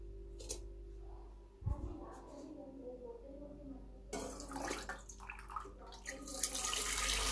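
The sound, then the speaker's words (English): After a quiet start with a single soft thump, a tap opens and water pours steadily into a watering can, a continuous rushing splash that runs to the end. “So, as you can see, I am just filling up the water can.”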